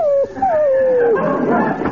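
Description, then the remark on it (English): A dog upset after a train trip whimpers, two thin, high whines sliding downward in pitch, followed by a rougher burst of yelping noise as it grows agitated. “He even turned on me, his master. Nice doggy.”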